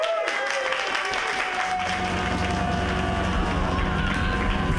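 A stand-up comedy audience claps loudly and steadily for a comedian's set, a dense wash of many hands that holds at full strength for several seconds, with some tonal sound faintly audible underneath.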